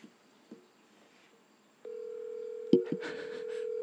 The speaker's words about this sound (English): Did you call him? Yeah, I'm calling him. He's not going to answer your phone call.